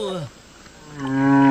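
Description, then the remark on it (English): A whale call: a low, moaning tone that slides downward, fades briefly, then returns as a louder, rising, sustained harmonic moan. No voices are heard. “So, well, there's your whale,”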